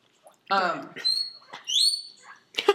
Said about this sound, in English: Do you hear the call of the whistle pig? Leo, you do not need any more food.